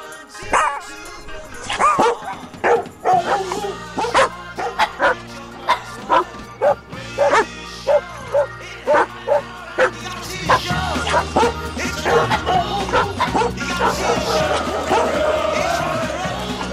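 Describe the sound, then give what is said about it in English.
A dog barks and yips again and again in quick, lively bursts, loud, over a steady musical background that swells toward the end. “Good boy. Sit. Stay.”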